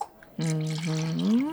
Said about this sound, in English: It's very good. It pours like a German beer. Yes, it does, yes.